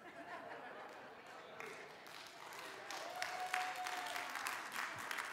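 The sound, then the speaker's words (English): An audience claps steadily for several seconds, a dense wash of applause that swells slightly toward the end, with faint murmurs and a bit of laughter mixed in. “Well, before you clap, let me explain that to you.”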